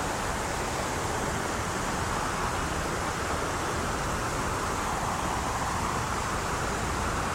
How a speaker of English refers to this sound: There's not been so much rainfall recently, there's a medium amount of water flowing. Not too much and not too little.